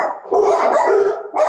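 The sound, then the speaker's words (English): Dogs barking in a quick, continuous burst of loud yaps, briefly pausing before another bark starts. “Sorry, guys. My dogs are barking.”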